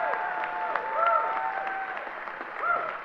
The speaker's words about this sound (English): Come on, let's give God a great hand clap of praise. Come on, you can do better than that.